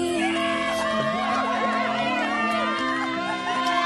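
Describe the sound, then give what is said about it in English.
Several voices mimic a crowd cheering and hollering at a couple kissing beside a fire pit, a loud, steady burst of overlapping whoops and high, swooping cries that lasts a few seconds without real words. “Nobody's cheering and clapping and hollering”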